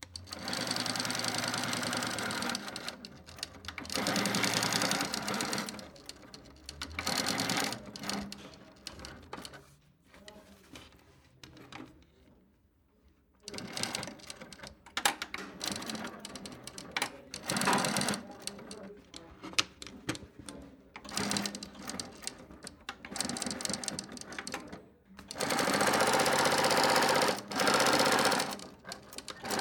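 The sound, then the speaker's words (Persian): A sewing machine runs in bursts of rapid, mechanical stitching, stopping and starting with brief pauses between runs, fairly loud with no one talking. “چقدر این صدا آشناست، صدای چرخ خیاطی.”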